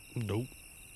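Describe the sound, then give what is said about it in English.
A cricket chirping sound effect: a steady chorus of crickets chirps continuously, with a brief voiced sound, like a person murmuring, rising over it for a moment near the start. “Crickets. Crickets. They are crickets.”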